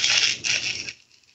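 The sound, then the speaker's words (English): A voice makes a drawn-out, raspy hissing noise imitating the sloths at the DMV slowly ripping off a paper in a film scene, fairly loud for about a second with a brief catch midway, then it cuts off. “Like, I loved when the camera got right to when they ripped off a paper and went.”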